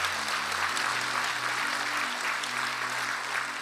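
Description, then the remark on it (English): A church audience claps together for everyone who said yes to the salvation prayer, steady, dense applause, a continuous wash of many hands that holds its level throughout, with a low sustained organ or keyboard tone beneath it. “Come on, let's clap for everybody that said yes.”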